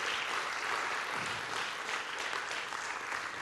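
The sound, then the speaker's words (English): An audience applauds the Lord in a dense, steady wash of clapping that holds at an even loudness for several seconds, with no voices standing out above it. “Can you give the Lord a good round of applause today?”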